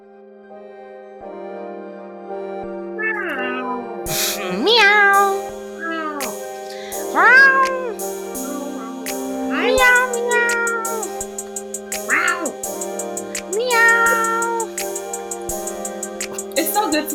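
A cat meows repeatedly, about a dozen drawn-out, rising-and-falling cries every second or two, fairly loud and close, over a steady humming tone in the background.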